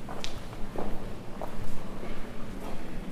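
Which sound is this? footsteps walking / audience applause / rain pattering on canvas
footsteps walking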